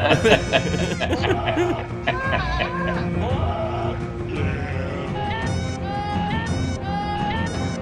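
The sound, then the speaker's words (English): Wavering goat bleats from the goat music parody Game of Goats ring out over a dense, loud music track, repeating throughout in place of a singing voice, up front in the mix and continuous from start to finish. “I guess that also means I need to break out Game of Goats, yeah.”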